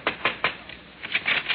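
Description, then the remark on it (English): Knocking on the senator's door in Allen's Alley, Portland, a door hung with a Christmas wreath made of an old spare tire painted green with a red ribbon: three sharp, evenly spaced raps, a short pause, then a quicker burst of four or five more knocks. No one speaks. “Well, let's knock.”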